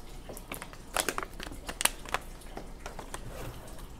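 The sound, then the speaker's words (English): Irregular crinkling and crackling of a thin plastic water bottle being squeezed while someone drinks, with sharp clicks bunching up in the middle and no talking. “And Erica, by the way, I'm going to take a drink for you.”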